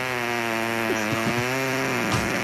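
A long, loud recorded fart, labeled a super fart, with a steady, buzzy tone, held for a couple of seconds with no talking over it.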